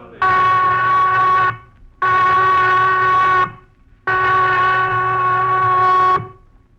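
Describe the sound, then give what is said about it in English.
A prison whistle blows three long, loud blasts, each a steady, piercing tone held for over a second, separated by brief pauses. “The prison whistle, Johnny, cutting Christmas out of the air like a knife.”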